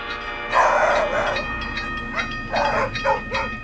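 Several sharp, loud dog barks ring out in short bursts over a steady rumbling train with a faint horn-like tone, against the continuous mechanical background.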